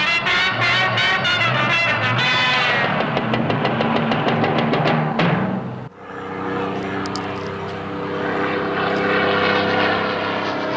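A P-51 Mustang propeller plane sound effect roars loudly, its engine a dense harmonic drone whose pitch sweeps downward as it passes, then after a brief break settles into a steady throbbing roar.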